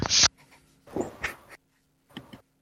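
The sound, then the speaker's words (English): Faint keyboard typing comes through a call line in three short clattering bursts separated by pauses, thin and slightly hissy, with no one speaking over it. “Clackety clack clack. Might be me typing. Yinx typing. It is Yinx typing.”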